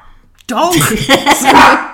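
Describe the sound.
A dog barks in a loud, yappy run of overlapping barks and yelps lasting about a second and a half, with a voice mixed in.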